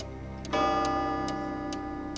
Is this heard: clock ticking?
yes